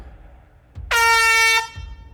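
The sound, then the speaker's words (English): A single loud air horn blast, a brassy sustained tone held for about two-thirds of a second, bracketed by low thumps just before and after. “Check out my air horn.”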